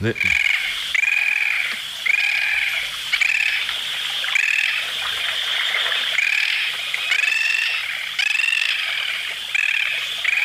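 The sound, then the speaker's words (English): A bird calls over and over in a steady rhythm, each bright, slightly rasping note repeated about once a second, loud with a faint background hiss. “the little guy that talks about these birds in his YouTube channel”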